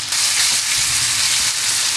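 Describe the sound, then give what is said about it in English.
Thin chicken breasts sauté in a hot pan, browning to a light golden brown, a loud, continuous crackling sizzle with no one speaking. “Basically, every time that I saute chicken breasts or do anything other than deep frying them, I want them to be this thin, because that way, by the time the inside's cooked, the outside's not overdone.”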